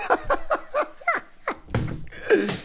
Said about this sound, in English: I just knocked over my camera.